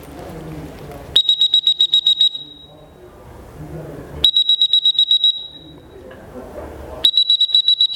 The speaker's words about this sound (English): I went like this, and I blew my whistle. Beep, beep, beep, beep, beep, beep, beep, beep, beep.